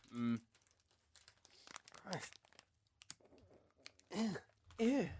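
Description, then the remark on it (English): A plastic packet of mochi rolls crinkles and tears in repeated rustling bursts as someone struggles to rip it open, with voices talking in between. “Again, really strong packet. Should have brought me scissors.”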